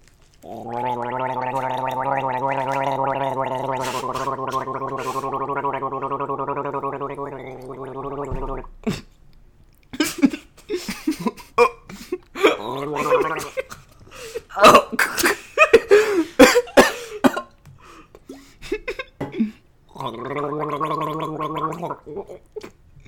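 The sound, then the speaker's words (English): A long, steady throaty gargle rumbles for several seconds, followed by a run of wet sputters and splashy bursts as water is spat out onto a microphone, then a second shorter gargle at the end. “just spit water on his microphone.”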